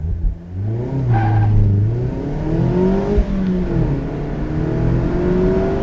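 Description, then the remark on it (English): An MX-5 sports car with a front-mounted 2-litre engine of 182 PS revs and pulls through the gears, its pitch rising and falling in sweeping harmonics as it accelerates, loud with steady road rumble underneath. “Well, the first thing you notice about this car is the extra power from that 2-litre engine sitting up front.”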